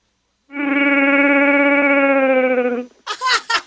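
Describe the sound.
A phone caller imitates a Wookiee roar with one long, sustained, tonal growl-howl lasting over two seconds, pitched somewhat high and thin, followed by a short burst of breathy, hissing noises.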